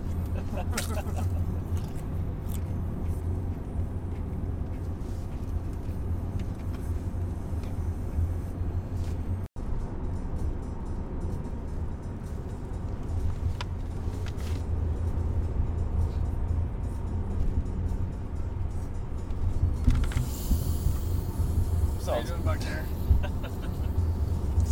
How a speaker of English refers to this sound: eat in a microphone for the next half an hour.